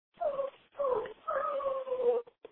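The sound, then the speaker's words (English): A dog whimpers in three drawn-out, high-pitched whiny cries over a couple of seconds, fairly quiet, with short pauses between them. “Is it like, oh, it's a dog?”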